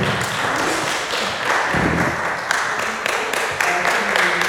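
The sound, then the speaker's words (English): Steady applause from an audience for volunteers, a dense, even wash of many hands clapping at once that holds at a fairly loud level for several seconds without any voices. “So I just want you to give them a big clap offering because they said yes.”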